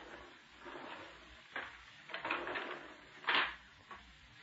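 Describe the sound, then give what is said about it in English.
Garage doors being pulled shut: a run of clattering, rattling bangs, with the loudest one near the end, and no voices. “Keep your shirt on and close the garage doors before some fool cop shows up and begins asking questions.”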